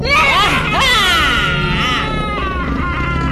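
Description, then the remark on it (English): Several voices wail and shriek together in long, wavering, pitch-bending howls, loud, overlapping continuously for a few seconds with no clear words. “Howled the things again.”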